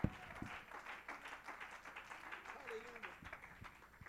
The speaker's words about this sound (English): Somebody ought to clap your hands and give God praise.